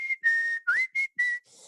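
A person whistles a short, clear melody of about five notes, mostly steady tones with one quick upward slide, alone with no talking. It is the tune they whistle every time they feed their pet birds.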